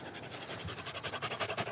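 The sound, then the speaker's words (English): A dog pants quickly and rhythmically, a steady series of breathy huffs with no voices around it. “Good panting.”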